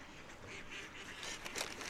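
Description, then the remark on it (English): Mallard ducks quack at a pond in a loose, overlapping chorus, with a few louder calls near the end over a steady outdoor background. No one speaks. “I'd love to see a GPS transmitter on one of these mallards to see its daily activities.”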